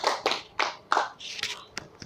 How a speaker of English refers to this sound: Clap for her. Is that how to clap? Hey. Please clap for her. Clap. Let the clap have life now.